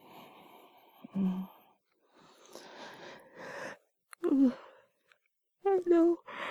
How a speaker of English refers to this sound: I know I should yawn. I'm sorry, but we're gonna sleep.